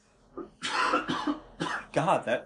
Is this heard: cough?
yes